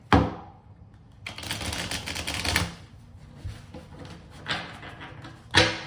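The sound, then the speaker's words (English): Crisp papery rustling and flapping of a deck of tarot cards being shuffled: a sharp snap, then a long riffling burst, scattered softer shuffles, and a final sharp slap. No one speaks. “And as I shuffle the cards, please do leave comments, likes, and shares”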